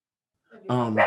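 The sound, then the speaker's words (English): A pet dog lets out a single loud bark with a harsh, tonal ring, rising quickly after a brief softer lead-in, with no talking around it. “And my dog is acting crazy.”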